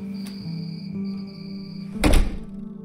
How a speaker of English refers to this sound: She opens the door.